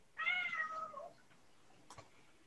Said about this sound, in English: You okay in there? Come on. Cat freaking out over here. Man. Said, I want to be fed. I'm freaking out.